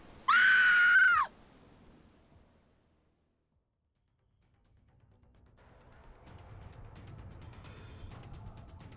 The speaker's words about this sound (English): She could see movement, and then she could hear her mother's scream.